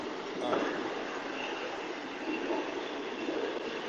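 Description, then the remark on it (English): A long train rumbles steadily past, its broad, continuous roar of wheels and cars holding at a constant level with no break or fade, and no one speaking. “It's still going. This is the longest train I've ever seen.”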